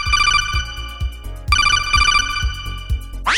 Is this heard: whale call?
no